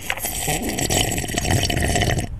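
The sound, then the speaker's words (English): Someone gulps water quickly and steadily in a timed drinking challenge, with wet swallowing and sloshing sounds running together for a couple of seconds and no talking. “I can't do it with water. I can only do it with tea.”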